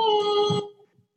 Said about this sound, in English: my parents' new cat.